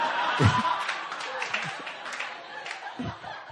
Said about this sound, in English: I don't know why y'all clapping. I'm scared.